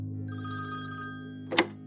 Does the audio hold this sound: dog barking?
no